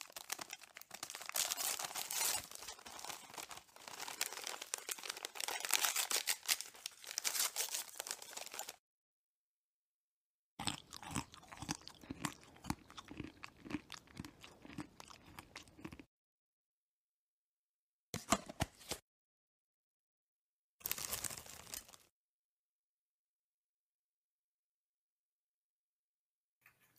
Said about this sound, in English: he's crunching and munching